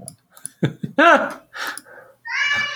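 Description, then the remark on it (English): A young child wails and screams in a tantrum, with a few short sobbing bursts building into louder cries and ending in a sustained, shrill scream. “Sorry for my children screaming.”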